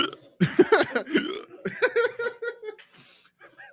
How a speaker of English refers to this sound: Why the fuck is it hitting me so hard? Are you good? I had the heat hiccups.